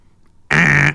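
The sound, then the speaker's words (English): After a moment of near silence, a single loud, buzzy fart sound effect blares out abruptly and holds steady for about half a second before cutting off. No one speaks. “Yeah, I got fart sound effects.”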